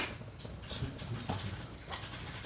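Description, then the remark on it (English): A male dog whimpers and pants softly because he wants a cork, with short whiny bursts repeating over a couple of seconds, fairly quiet, with no one talking. “I'm surprised he's not barking. Yeah, because he wants the cork.”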